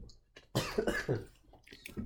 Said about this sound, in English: little sip.